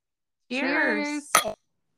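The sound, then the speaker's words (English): Glasses clink together in a toast, one quick bright ring right after a short drawn-out voiced cheer. “I was about to cheers to that.”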